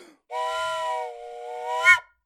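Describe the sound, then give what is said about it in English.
A steam train whistle blows one long, steady, chord-like blast for about a second and a half, swelling briefly louder with a breathy hiss just before it cuts off. “Blow the fucking whistle.”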